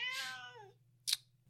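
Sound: cat meowing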